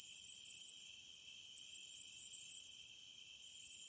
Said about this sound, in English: biologist Alan Sanborn said that the Havana recordings sounded to him like cicada insects